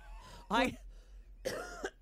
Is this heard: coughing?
yes